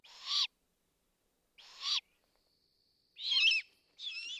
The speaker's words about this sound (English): I visited Ho-Hum almost every early evening, before he flew out to hunt. This owl, that had ignored me when his family was around, now cried softly as soon as he spotted me.